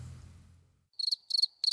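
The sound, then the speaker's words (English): Crickets chirp in three quick, pulsing bursts, a steady trilling rhythm with short gaps, following a low fading rumble at the start. “There's cricket noises.”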